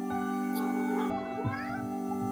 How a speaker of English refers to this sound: Cat?